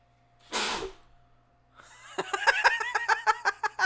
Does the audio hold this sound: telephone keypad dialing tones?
no